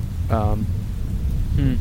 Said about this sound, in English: Let's get out of the rain.